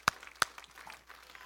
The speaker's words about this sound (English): And if you believe that, let's give the Lord a big clap offering. Thank Him tonight.